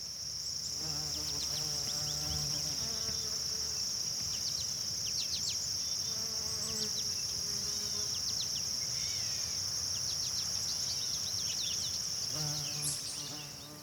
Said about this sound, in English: So I thought it did a really good job of picking up all the ambient noise, the birds and the bees and the grasshoppers and everything that I was hoping to catch on some kind of a nature podcast.